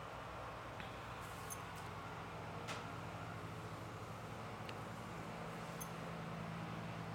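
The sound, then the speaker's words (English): A heavy truck with a rough, tractor-like engine rumbles past, its low droning hum steady throughout over a wash of background noise, with a few faint clicks. “It's like a tractor.”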